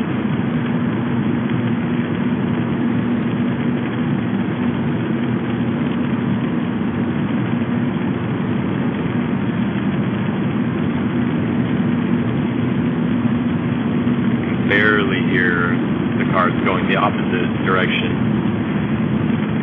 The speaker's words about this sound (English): I guess the tire noise is staying the same because I'm on cruise control at exactly 65 miles an hour, so that's not changing. I thought maybe I would hear an engine noise change. Use a little more RPM juice. But I didn't notice a change.